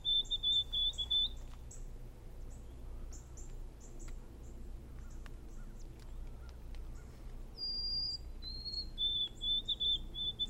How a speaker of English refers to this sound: It's called the white-throated sparrow